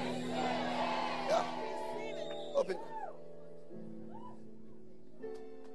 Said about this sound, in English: Somebody shout, I receive it.